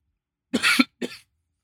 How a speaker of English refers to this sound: Hold on, take two. I'm coughing. Oof. All right, I'm back.